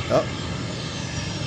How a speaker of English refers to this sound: Oh, it's a landing this time. 737. Exactly. He's coming in. Coming in.